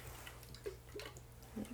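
Coconut water being poured into glasses: a quiet trickle with a few small splashy gurgles over a low steady hum, and no one talking.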